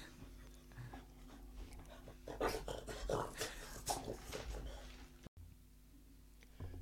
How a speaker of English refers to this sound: You might be able to hear my dog. She's just come in the room.